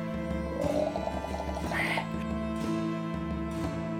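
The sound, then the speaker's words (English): A single drawn-out lion roar that rises and then trails off, moderately loud, set against a steady low droning hum that runs underneath the whole time. “The lion roars.”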